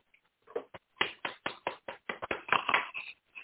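Someone claps their hands in a quick, steady run of about a dozen crisp claps, growing slightly louder toward the end, with no voices over them; a golf clap given for the show's producer.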